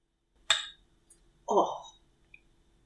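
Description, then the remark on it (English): Drinking glasses clink once in a toast, a sharp chime with a short bright ring, followed a second later by a brief muffled vocal sound. “So cheers. Chin chin.”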